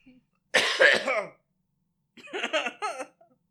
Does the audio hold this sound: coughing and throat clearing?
yes